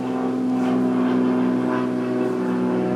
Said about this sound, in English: Now there is an airplane, a small airplane, passing. So I'll wait a minute. Well, I don't know if it's small. Maybe it's very big, actually, but it looks small.